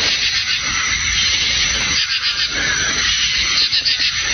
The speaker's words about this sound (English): Sounds like the frogs are taking a shit.